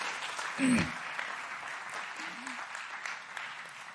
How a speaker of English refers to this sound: Thank you for standing. Clap your hands to the Lord one more time and let's give him a praise.